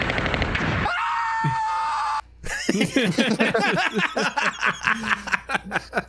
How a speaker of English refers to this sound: Classic. Perfectly cut screams.